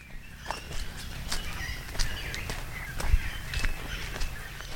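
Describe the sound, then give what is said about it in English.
Irregular footsteps crunch and rustle at a steady walking pace through the undergrowth of a protected forest that is a natural grasshopper breeding habitat, with soft crackles of leaves and twigs underfoot and faint bird chirps in the background; no one speaks. “Grasshoppers are said to breed in natural habitats such as the forest I'm walking through.”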